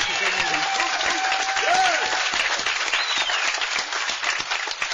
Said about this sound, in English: And this committee deserves a tremendous round of applause from us, I'll tell you.